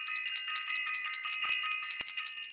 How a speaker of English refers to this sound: Let me ring that bell. Listen.